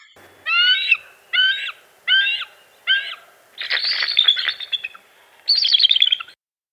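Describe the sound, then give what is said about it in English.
A bald eagle gives a series of high, thin chirping calls: four evenly spaced squeaky notes, then a rapid chattering burst and a final piping trill, clear with no talking. “Bald eagles sound like seagulls, basically. It is like a chirping sort of like ee, ee, ee.”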